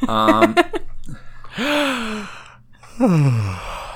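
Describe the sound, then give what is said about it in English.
A person lets out long, drawn-out yawns, each rising then falling in pitch with breathy, voiced tones, fairly loud, with a brief pause between them. “I'm leaving the yawn in.”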